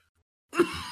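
After a moment of silence, a single harsh, breathy cough bursts out and trails off into a rough exhale, with no talking alongside it.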